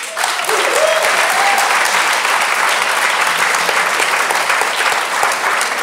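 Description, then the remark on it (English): Steady audience applause fills the space, a dense, continuous patter of many hands clapping at even loudness throughout, with a brief whoop or voice rising near the start. “Please join me in giving them both a round of applause.”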